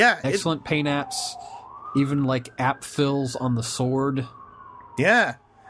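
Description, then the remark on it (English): An emergency vehicle siren wails steadily in the background, its tone gently rising and falling, while people talk over it in the foreground. “There was a siren, by the way, in case you think someone's coming outside your house, dear listener.”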